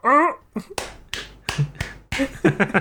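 A brief voiced, bark-like call, then a run of sharp, loud claps at an uneven, quickening pace, like someone clapping the way a seal does. Faint vocal sounds mix in near the end.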